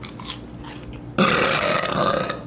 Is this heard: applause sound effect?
no